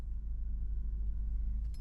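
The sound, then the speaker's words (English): A car's deep, steady rumble hums, ending with a brief high-pitched squeak as it comes to a stop. “He brought the car to a halt, and both of the rear doors swung open.”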